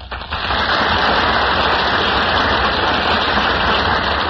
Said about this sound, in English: That applause, ladies and gentlemen, means that William Powell and Ginger Rogers are now entering from the wings of the Gulf Theater.